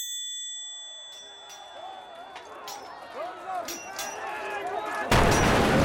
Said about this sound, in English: Our situation is dire. The king's forces are at the gate. Their siege engines pound us remorselessly.